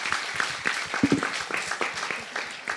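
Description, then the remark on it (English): An audience claps together in a steady, dense patter of many hands, fairly loud and sustained for a few seconds with no voices over it. “And if you have to go, maybe now's the time, but a round of applause if anyone...”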